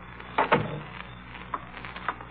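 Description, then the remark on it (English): A door opens with a short wooden clunk and scrape as someone comes in, followed by a few faint, scattered clicks and footfalls in otherwise quiet surroundings, with no talking. “Somebody's coming in the door.”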